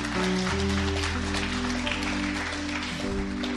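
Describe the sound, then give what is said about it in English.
A church audience gives the Lord a hand clap, steady in a dense, continuous wash of applause, while sustained organ chords hold underneath and shift pitch partway through. “Come on, give the Lord a hand clap, y'all.”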